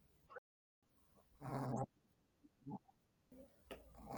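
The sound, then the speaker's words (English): A female dog snoring, letting out snorting, pig-like grunts: one long, loud rasping snort followed by several shorter, softer snuffles, with no talking. “have you got a snoring dog? I do. I'm gonna leave that in the podcast because she makes pig like noises.”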